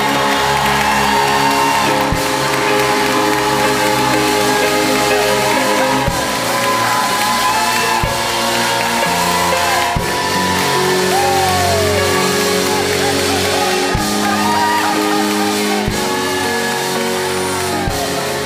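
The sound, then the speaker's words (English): An audience claps their hands for Jesus and cheers loudly and continuously, a dense wash of applause with scattered high whoops and shouts rising above it, holding steady the whole time. “If you mean that, clap your hands for Jesus.”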